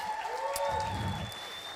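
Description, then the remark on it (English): A church audience breaks into a round of applause for their pastor and another church leader, a dense, steady wash of clapping that holds at an even level throughout, with a faint sustained hum beneath it. “So why don't we give them a massive round of applause.”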